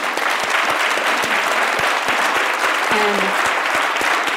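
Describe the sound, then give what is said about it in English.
Sustained, loud applause from many hands clapping at once, a dense, steady crackle that doesn't let up, with a faint voice briefly rising through it near the end. “I just want to applaud you for that.”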